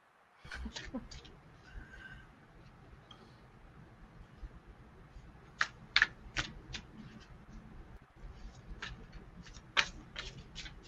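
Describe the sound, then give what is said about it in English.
Playing cards rustle and snap, a run of crisp, irregular flicks and clicks over a low, steady background murmur. “I hear cards. I hear you. I hear you rustling cards now.”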